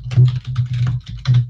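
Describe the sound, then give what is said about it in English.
Loud typing on a computer keyboard, a quick burst of several clacking keystrokes in an uneven rhythm with short pauses, no voices. “That was a loud type.”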